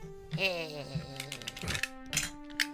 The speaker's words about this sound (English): Dice. Here comes the dice.